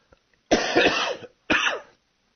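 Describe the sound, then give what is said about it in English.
Two fairly loud coughs, a longer harsh one followed a moment later by a shorter second burst, with no talking around them. “I don't even have a cough button.”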